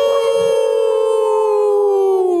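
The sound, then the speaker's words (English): A person lets out a single long, loud wolf-like howl, a sustained tone that holds steady and slowly falls in pitch over a couple of seconds. “Right, one more time, the howl. Let's do the howl, man.”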